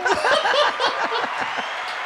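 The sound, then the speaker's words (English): A brief burst of clapping mixed with laughter and chuckling voices, steady and fairly loud throughout, fading slightly toward the end. “It doesn't have the same effect when I clap for him.”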